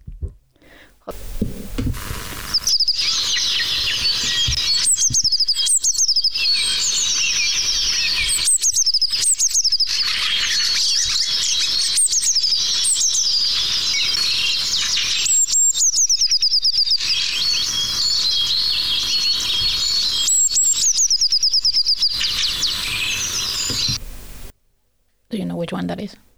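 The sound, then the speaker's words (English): A blue tit sings a steady run of bright, high chirps and trills, repeating with brief pauses for about twenty seconds, clear, with no talking over it. “And that is the blue tit.”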